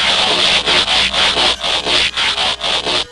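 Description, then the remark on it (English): Autobot robots transforming into trucks and cars: a loud, bright mechanical ratcheting, about ten rapid rasping pulses in a steady rhythm, with no voices. “Quickly, Autobots, transform!”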